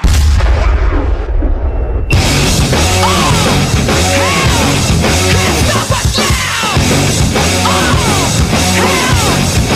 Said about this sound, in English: Touchdown, Tampa Bay. Bucks lead. Fire them cannons. Bucks take the lead late with 9 seconds left.